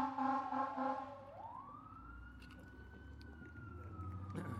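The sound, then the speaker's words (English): A fire engine siren wails by, opening with a brief blaring horn before the tone sweeps upward into a long sustained howl, fairly loud over low traffic rumble, with no voices. “And he knows that we are supposed to pray for the fire engine as it goes by.”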